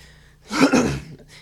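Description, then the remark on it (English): A brief cough and throat clearing, one rough, breathy burst of about half a second between quiet moments, with no talking. “I had like a cough.”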